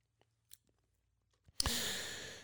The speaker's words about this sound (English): So let's see what they had to say. After I sip my Patriots mug here.